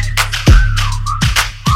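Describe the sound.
A sliding whistled tone carries a short melody over a hip-hop beat, with deep booming bass hits and sharp snappy percussion. No voices.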